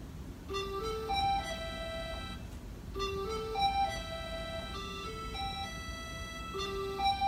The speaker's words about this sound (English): So that's called Echoing Flute. It's a very... It's just a jingle, I suppose. Yes, that. It's very simple. It's very pretty, though.